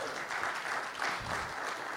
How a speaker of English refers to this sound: It is good to celebrate that, because y'all can give an amen or a hand clap, because that is something worth celebrating, right?